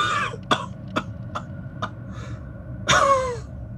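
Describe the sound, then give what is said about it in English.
A run of short, dry coughs in a loose rhythm, followed by a longer, rougher cough with a strained, voiced edge. Fairly clear, with no talking. “You wait for a moment and hear a cough from ….”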